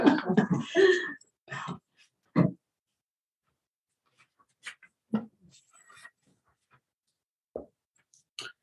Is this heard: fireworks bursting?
no